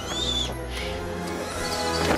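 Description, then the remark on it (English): An owl hoots in the trailer for the 2002 film Harry Potter and the Chamber of Secrets, over a steady, low droning backdrop, with a brief high whistling sweep at the start. Moderately loud and continuous for about two seconds. “Bloody birds of menace.”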